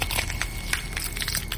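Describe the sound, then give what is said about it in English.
Bones crack and crunch in a series of sharp, uneven pops over a steady low rumble, with no voices, as a woman bends double at the spine. “She bent double at the spine, bones crackling, until she looked up at him again between her own knees.”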